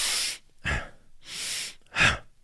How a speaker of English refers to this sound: That's a very active inhale through the nose and exhale through the mouth. It can also be done active inhale through the nose, passive exhale through the mouth, like so.